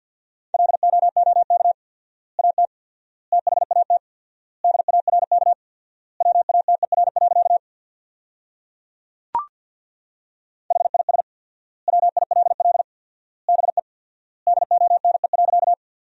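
Fast Morse code at 50 words per minute with four-times word spacing, sending sentences built from the top 500 words, in a single steady mid-pitched tone, keyed in rapid dots and dashes grouped into words with long silent gaps between them, plus one sharp click partway through.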